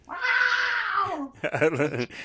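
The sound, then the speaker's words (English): A cat gives a loud, strained yowl while giving birth on a bed. The yowl holds for about a second with a high, wavering pitch, then breaks off as a human voice speaks briefly afterward. “She was screaming. Oh, because she was giving birth.”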